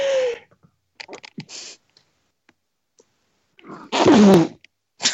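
A few soft clicks and breathy rustles lead up to one loud, sudden sneeze, a sharp burst of noise with a voiced cry that drops in pitch, then quiet.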